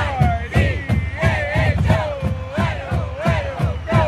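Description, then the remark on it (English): The University of Idaho marching band plays the fight song on a golden November day in Moscow, Idaho, at the Vandals' last home football game of the season: bright brassy horn melody over a steady pounding drum beat, loud and continuous with a crowd murmuring underneath. “The marching band plays the fight song.”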